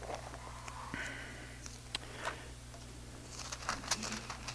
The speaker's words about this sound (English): Don't you like the sound of pages turning? If they can make an app for your Bible phone that when you like put in a scripture or a reference and you hear the pages turning, that would be really cool, wouldn't it?